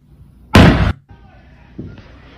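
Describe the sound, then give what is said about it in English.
A flashbang grenade goes off during an FBI raid on a home, in a single loud, sharp blast that cuts off quickly, followed by quieter background noise and faint, muffled voices. “It was a flashbang. It was not a gunshot, but you don't want to mess that up.”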